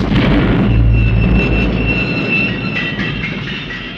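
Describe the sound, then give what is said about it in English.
A loud, deep explosion of a train being blown up rumbles heavily at first, then slowly dies away into a roaring, hissing wash of noise and faint metallic ringing, with no voices. “With the train crippled from the explosion, a victorious Lawrence climbs up on the overturned carriages”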